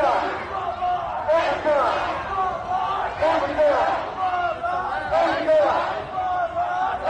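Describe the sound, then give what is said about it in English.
A large crowd of protesters marching down a street shouts and chants together outdoors, many voices rising and falling in overlapping waves of yelling, loud, continuing throughout. “So for those of you on the podcast, we were marching down the street.”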